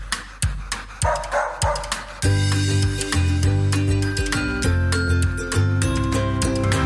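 A dog barks sharply about six times in a quick, steady rhythm, loud, then music starts and plays on without further barking.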